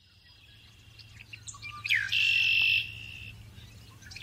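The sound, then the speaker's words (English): A red-winged blackbird sings: a sharp rising note followed by a loud, buzzy trill, with faint chirps before it and a low steady hum underneath. “Red-winged blackbirds. Sweet and pure, their songs piped up, trilling away into silence, rising again from that pool of quiet, sure, and silver pouring over and over into my ears.”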